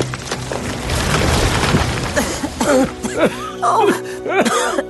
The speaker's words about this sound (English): Then he and the Toymaker ran from the forest, just as a flaming branch crashed to the ground.